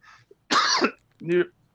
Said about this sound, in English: As I die from this cough, I don't cough all day until I'm on the pod.